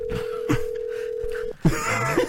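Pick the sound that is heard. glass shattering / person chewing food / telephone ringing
telephone ringing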